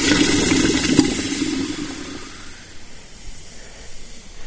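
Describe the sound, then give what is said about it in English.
A hot iron horseshoe, just finished at a forge, plunged into a barrel of water to cool it, hissing and sizzling loudly with a burst of steam, then the fizz slowly fades to a softer, bubbling crackle over a few seconds. “And of course, when the shoe was finally ready, we all used to love this, was to dip it in the water to cool it off, because the sound of it was something special.”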